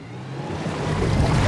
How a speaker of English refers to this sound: Yes! It works! It's sucking the ocean back from Uranus! It worked! The ocean is back on Earth!